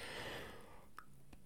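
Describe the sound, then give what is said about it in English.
A big, drawn-out yawn: a long breathy exhale that swells then fades over about a second, followed by two small mouth clicks, fairly quiet, with no talking. “And a lovely big yawn. I'm not even going to edit that out.”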